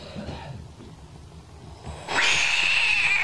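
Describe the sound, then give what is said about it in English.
After a couple of seconds of quiet, a Pac-Man frog suddenly lets out a loud, harsh, sustained scream, a shrill cat-like wail that holds steady to the end. “What the fuck? Sounds like a cat.”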